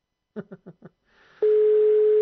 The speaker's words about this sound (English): Let's see if it goes the exact same place. It's just that these prices are ridiculous. I don't know how they can legally have these prices. Amazing. Sounds like the same ringtone, funnily enough.